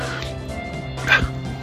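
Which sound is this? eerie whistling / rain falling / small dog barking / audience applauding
small dog barking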